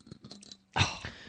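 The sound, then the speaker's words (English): A bottle scraping across teeth: a few quiet, dry clicks and rattles, then a sudden louder, harsh gritty scrape that grinds on for about half a second. No voices. “Here's what the sound of a bottle going across teeth sounds like.”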